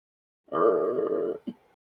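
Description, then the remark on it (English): A chair creaks loudly as someone leans back in it: a drawn-out, low, wavering creak lasting about a second, followed by a brief second squeak, with no talking over it. “Like, it's so fucking loud and creaky.”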